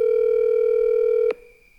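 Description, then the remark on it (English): A loud, steady electronic Telegram call ringing tone holds one pitch for over a second, then cuts off abruptly with a click and a brief fading tail. No voices. “It's ringing super long because I'm doing Telegram call.”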